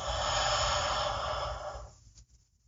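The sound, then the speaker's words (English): A single long, deep inhale during a guided breathing exercise, a steady airy rush lasting about two seconds before trailing off into quiet. “Nice and deep. Big inhale.”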